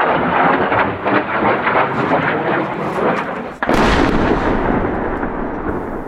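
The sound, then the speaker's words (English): At dawn in Ukraine, a steady roaring rumble of a jet overhead is split by one sudden, loud blast of a KH-31 missile landing about 700 yards away: a sharp crack followed by a broad, sustained roar that slowly fades. No one speaks. “A missile, a $500,000 KH-31, Ukrainian officials later say, lands just 700 yards away.”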